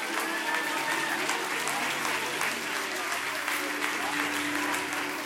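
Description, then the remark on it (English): An audience at Reach Church Paramount cheers and applauds steadily, a dense wash of clapping with scattered shouts and voices mixed in, loud and sustained throughout. “Cheer them on. I said, cheer them on.”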